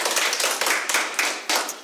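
A burst of applause from a group, dense overlapping hand claps forming a steady, loud crackling wash with no voices.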